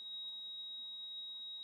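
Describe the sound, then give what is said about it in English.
A heart monitor's flatline: one steady, high-pitched electronic tone that holds unbroken at an even level with no pauses, heard alone with no voices. “When you're looking at a heart monitor, nobody wants to see a straight line. and it's beeping.”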